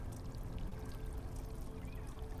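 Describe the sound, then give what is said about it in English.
Water dripping and trickling steadily without pause off a robe in a tunnel, a dense, continuous wash of watery sound at an even moderate level, with no voices. “Exhausted, feet slapping against the floor, flap, flap, flap, water dripping off your robe.”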